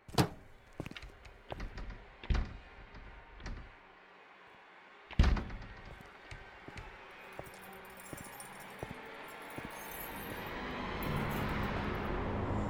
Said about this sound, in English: I hate the sound of those keys.